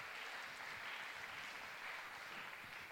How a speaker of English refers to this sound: Why don't we give our actors a round of applause? Outstanding.